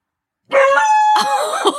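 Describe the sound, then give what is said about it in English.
A dog barks in two loud, high-pitched, drawn-out bursts with a whiny, tonal edge, the second coming right after the first with no voices around. “Oh, he's barking a lot.”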